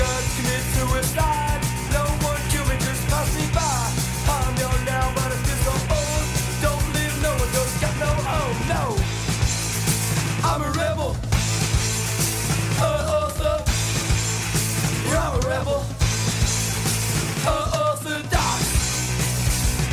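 A loud, raw punk rock band recording plays throughout, with dense distorted guitars, steady drums and shouted vocals that rise in bursts over the steady wall of noise.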